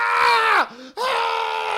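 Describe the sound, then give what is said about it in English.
A loud, strained vocal scream of pain, imitated by a voice, of a man whose hand and face have been badly burned: a long anguished cry that sags downward, breaks off briefly, then resumes in a second drawn-out howl. “And he's screaming in pain.”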